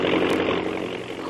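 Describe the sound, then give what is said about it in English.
A steady, loud airplane engine roar as the plane jerks forward for takeoff, with a low droning hum and broad rushing noise, holding constant without a break. “The plane moves forward with a jerk, throwing Kitty off balance onto the floor of the cabin.”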